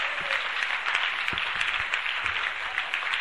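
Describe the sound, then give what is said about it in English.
A church audience applauds for Jesus steadily throughout, dense overlapping claps forming a continuous wash of sound with a few sharper individual claps standing out, fairly loud and sustained. “Come on, clap for Jesus.”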